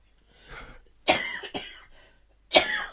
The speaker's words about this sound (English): Oh, I've been struggling with this cough for a little while now.